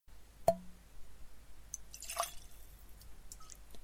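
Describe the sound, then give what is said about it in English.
Glenfiddich 18-year-old whisky poured into a glass: a sharp clink and drip, then a short, quiet splashy burst of liquid, with a few faint drips after. Soft, with no voices. “Splishy splash.”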